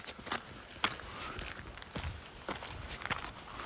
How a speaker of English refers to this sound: Gravel crunched under our feet.